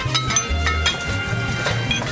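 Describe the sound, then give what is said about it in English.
Sound effect of glassware on an Art Deco drinks trolley clinking and rattling continuously, with bright repeated chinks over a low rolling rumble of wheels; no one speaks. “No, it was an official, an Art Deco drinks trolley sound effect.”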